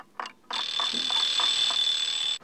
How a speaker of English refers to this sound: An alarm clock 1 metre away.